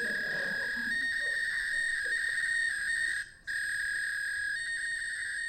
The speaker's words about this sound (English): A text message is coming through using ancient 2400 characters per second modem technology.